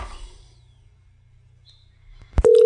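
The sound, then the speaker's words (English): A steady electronic ringing tone of an outgoing phone call starts abruptly near the end and rings loud, after a quiet stretch of low hum. “And please, if it goes to voicemail, don't just have your phone number.”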